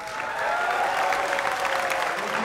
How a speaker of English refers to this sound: Let's get the applause because...